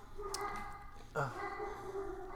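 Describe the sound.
A dog gives one short, sharp bark partway through, set against a steady tonal background with some faint, indistinct voice-like sound around it.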